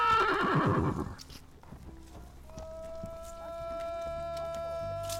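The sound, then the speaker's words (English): An excited horse lets out a loud whinny that descends and fades, followed by scattered hoof clops and shuffling as it prances about, with a steady tonal hum in the background. “Chang is pretty excited about going home, too. He's prancing around like a jerk while I try to record.”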